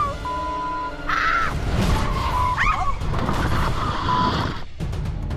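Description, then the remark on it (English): Car tires screech and skid over a loud, rumbling engine roar as the car crashes into obstacles on an obstacle course, with wavering high squeals rising and falling for several seconds before a brief break near the end. “After they crashed into so many obstacles on the course, Lexus asked them what they thought about texting and driving.”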